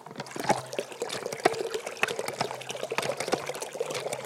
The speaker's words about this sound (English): But I do have to water that Anjou pear. So I come down each morning and give the pear a bucket of water. From the well.